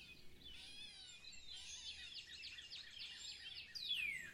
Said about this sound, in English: Imagine it's a beautiful day. Birds are singing, there's a light breeze.